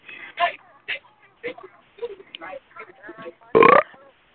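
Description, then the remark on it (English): A loud, drawn-out burp rumbles up near the end, following a string of short, croaky vocal bursts that sound like smaller belches or throaty noises. “Ooh, somebody burped.”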